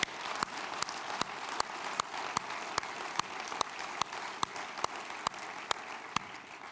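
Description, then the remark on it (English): A steady wash of audience applause for a group's ministry runs throughout, a dense crackle of many hands clapping at a moderate level, with a few sharper individual claps standing out in a loose rhythm. “Can we give these folks a round of applause for their wonderful ministry?”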